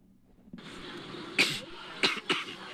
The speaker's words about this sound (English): Oh, you got that coronavirus, huh? You like that? Spreading it to all the other Democrats. Yeah, this was my only entertainment in line, was coughing as loud as possible and talking to people about how great my trip to China was.